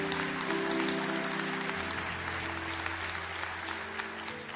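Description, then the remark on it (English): A large crowd claps steadily, a dense wash of applause at a consistent, fairly loud level throughout, with a low hum underneath. “If that's you, clap your hands right now.”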